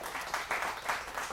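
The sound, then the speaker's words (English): A short burst of applause for the Lord: a dense, crackling wash of many hands clapping at once, swelling slightly a few times, moderately loud, with no voices over it. “Yes, I applaud the Lord too.”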